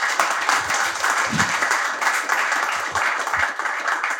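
A crowd applauds the OpenSats team loudly and steadily, a dense wash of many hands clapping at once with a few scattered whoops, without pause.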